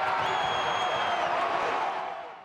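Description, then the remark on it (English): A stadium crowd, with the supporters' section known as the battalion, roars and cheers after Tristan Borges scores directly from a corner in extra time, a dense, sustained wall of voices with a faint high whistle-like tone riding on top, easing off slightly at the end. “And for Borges to do that right in front of the battalion as they're cheering, perfectly timed.”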